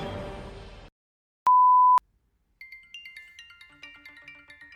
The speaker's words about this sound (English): Bill collectors call. Can we please silence all phones on the podcast, please?